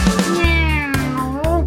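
A cat meows loudly, a run of drawn-out, wavering meows following one another with almost no pause, with no talking.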